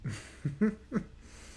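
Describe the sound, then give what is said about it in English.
Heavy breathing: four short, voiced huffs in quick succession, fairly quiet, with no talking around them. “You know, you breathing heavy as hell.”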